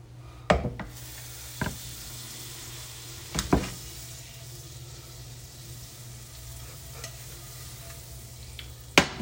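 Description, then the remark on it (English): Butter sizzles in a frying pan with a steady, soft crackling hiss, broken by a few sharp clinks and taps of a utensil against the pan. “Okay, butter has been applied.”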